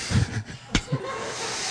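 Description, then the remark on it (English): A voice imitates thunderous applause with a steady, breathy rushing hiss that holds for under two seconds, broken by a brief sharp pop partway through. No words are spoken. “The sound of like thunderous applause.”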